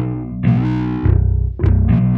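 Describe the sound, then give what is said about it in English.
A thick, distorted low bass line plays loud and alone: a bass sound pitched down on a computer and sent out to an amp, blended with keyboard bass, with a few sustained notes and a pulsing, buzzy growl. “But it's pitched down on the computer and then sent out to an amp. Right. But that's blended with this like keyboard bass.”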